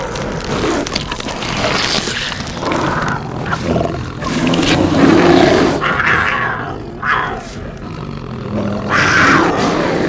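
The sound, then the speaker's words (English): A wolf snarls and growls ferociously for about ten seconds, loud, with rough bursts of thrashing and scuffling as it struggles while pinning a person down. No voices are heard. “Got his gun, but I can't get a good shot. The cursed wolf keeps thrashing about.”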